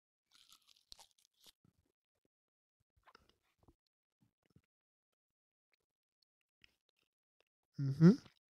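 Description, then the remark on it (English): Quiet crunches and crisp snaps of someone biting into a chocolate bar, followed by scattered soft chewing clicks in near silence, then a brief voiced hum at the end. “I wouldn't allow you to get any unnecessary chocolate. How many bites do you do on your?”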